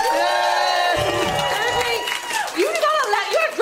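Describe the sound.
An audience applauds and cheers, a steady, loud wash of clapping mixed with overlapping voices. High whoops rise and fall toward the end.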